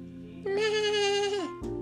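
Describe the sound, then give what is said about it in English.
A goat lets out a single drawn-out bleat, about a second long, holding a steady nasal pitch before it dips at the end. It is fairly loud, with no talking. “The oldest goat saw both Juan and Antonio playing in the grass. He did a little goat dance and made a funny sound.”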